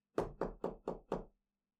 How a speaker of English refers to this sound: And then all of a sudden, she hears a knock at the front door.